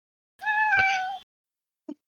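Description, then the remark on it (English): A single drawn-out cat meow, clear, lasting under a second, followed by a brief soft chirp or thump after a short pause. “I have a very happy to see me, kitty.”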